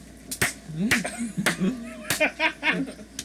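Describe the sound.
A slow clap: about four sharp, evenly spaced claps with deliberate pauses between them, while soft laughter and murmuring voices carry on underneath.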